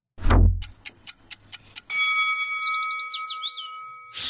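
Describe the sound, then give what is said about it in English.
A low whoosh-thump opens into a quick run of clock ticks, then a bright sustained chime rings out with sparkling, descending shimmer, like a game-show timer starting a 5-minute clock. No voices. “All right, 5 minutes on the clock.”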